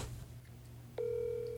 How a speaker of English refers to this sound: We are ringing him up right now. If he answers.